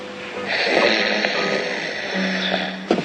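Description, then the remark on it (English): A person puts on an exaggerated, deliberate snore on request, a raspy, rattling breath drawn out over a few seconds, ending in a short snorting catch. No talking. “…, would you like to snore something for my father?”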